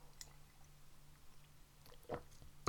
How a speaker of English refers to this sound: Bear with this. I just need a slurp of this.